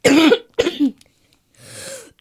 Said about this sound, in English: Hit that cough button next time.